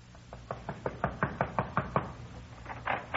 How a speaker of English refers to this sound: We went over to Red's place and knocked on his door.